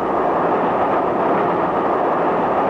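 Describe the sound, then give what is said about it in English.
Train wheels rattle over crossover points one mile south of the Clayton Tunnel on the London, Brighton and South Coast railway, inside a steady, loud rolling rumble that fills the whole stretch with no voices. “Did you hear that rattle of the wheels just now? Feel the whole train sway slightly?”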